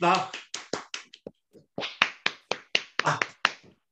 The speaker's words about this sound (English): So, I win. A round of applause one more time.